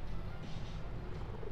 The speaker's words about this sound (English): But I want to capture Ferris purring because I want people to hear his Jetson purr.